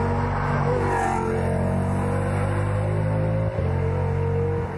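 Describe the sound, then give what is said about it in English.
A Lamborghini sports car, running as the zero car on a rally stage, drones loudly and steadily, its deep harmonic engine rumble holding a constant pitch throughout with a brief dip near the end, and no voices. “That's Kevin Weeks's Lambo. Yes. Which is actually the zero car.”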